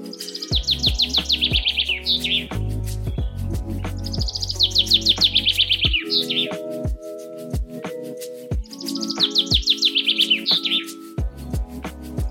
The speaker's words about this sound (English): So I am going to help you out. Here's a little bit of bird singing because I want you to feel even better today.